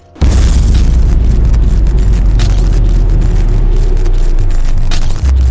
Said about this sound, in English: And that's when the explosion and light show begins.